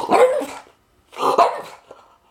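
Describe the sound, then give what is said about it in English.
Mr. Gatsby, a French bulldog, barks twice, fairly loud, with a short pause between the two hoarse, rough barks and a faint trailing yip at the end. “This season dedicated to my best friend, my French bulldog, my crime-fighting canine, Mr.”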